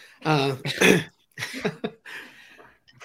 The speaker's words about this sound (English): Excuse me. Still got a bit of spicy cough.